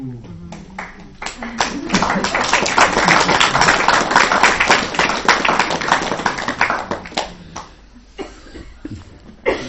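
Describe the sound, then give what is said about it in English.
An audience applauds in a dense, sustained burst of clapping that builds quickly, holds steady for several seconds, then thins out into scattered claps as a voice returns. “I haven't had an applause for about 20 years.”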